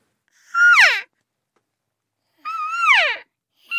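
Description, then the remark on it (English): A woman, a natural voice elk caller, imitates cow calls using nothing but her vocal cords: two drawn-out, wavering moo-like cries with strong harmonics, separated by a pause of silence, with the start of a third cut off at the end. “I will not say much about this next piece, except that all the sounds come from a person using nothing but her vocal cords. So here's a couple of the cow calls.”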